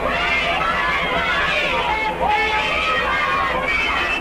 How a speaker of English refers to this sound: And they're screaming, we want the … and all that stuff.